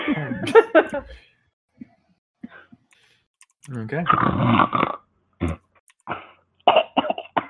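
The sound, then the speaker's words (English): A voice imitates the loud, thaumaturgic snores of a passed-out tiefling character: a short harmonic snort, then several rough, rasping, growl-like bursts separated by brief pauses and faint clicks, with no words spoken. “Throw in random thaumaturgic snores.”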